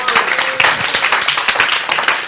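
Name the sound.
audience clapping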